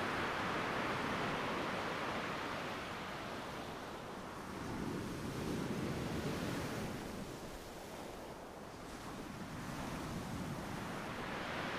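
Ocean waves roll onto a beach in a continuous hissing wash, swelling and receding in slow surges every few seconds, with no voices present.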